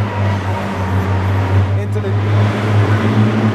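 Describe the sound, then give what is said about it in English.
Airport baggage handling machinery, which moves luggage from plane to baggage claim, runs continuously, a loud, steady low drone with a humming motor tone and a broad rumble that holds unchanged for the whole stretch. “They do that to make you think that he's trying to talk while this machinery is all going”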